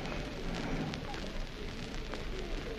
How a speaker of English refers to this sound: You're down on the platform, right at the end of the very long platform here, right at the end of the very long platform, and the train just come in, a train on its way up towards Cockfosters.